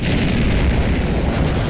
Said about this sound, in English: And for a moment, nothing happens. It seems that your gamble did not pay off. But then a low rumbling begins, until it builds into a cacophonous explosion.